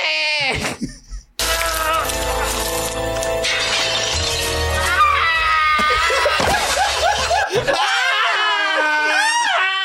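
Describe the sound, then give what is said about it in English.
A loud, shrill scream from a man in a movie clip rings out over a crash of shattering as he lands hard, followed by more high-pitched wailing and shrieks with harmonic warbles, intense throughout. “Yeah, and what's funny about that, listen to the scream, boy.”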